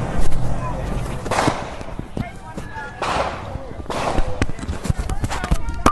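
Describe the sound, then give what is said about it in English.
Rapid, irregular gunshots crack out during a street shootout at George Floyd Square, some sharp, with shouting voices and commotion in between. “It sounds like gunshots. I'll let you know what this is. These seem to be gunshots.”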